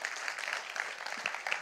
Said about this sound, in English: Round of applause